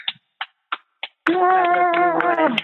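Four sharp, evenly spaced hand claps for Lena Waithe ring out alone, followed by a loud, sustained wavering tone like a drawn-out sung voice.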